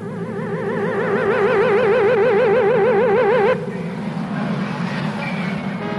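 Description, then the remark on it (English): A warbling, wavering electronic tone cuts off abruptly, then a car approaches on the planet Schwartz with a steady engine rumble and road noise, moderately loud. “Look, Schlock, here comes a car, and feast your Vulcan squinties on that driver.”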